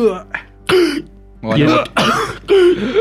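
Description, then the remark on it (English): A voice imitates the winded, choking coughs of someone punched in the lungs: a few short raspy gasps followed by three harsh, loud hacking bursts in quick succession, with no other talk. “I'm like when you get punched in the lungs and they like cough up spittle and blood. You're on the floor and you're winded.”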